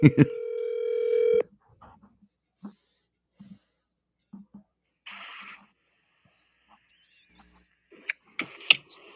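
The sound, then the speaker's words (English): A loud, steady phone dialing tone sounds for about a second and a half as someone calls a person on the phone, then cuts off, leaving faint scattered clicks, breaths and brief noises. “Like, let's call him on the phone.”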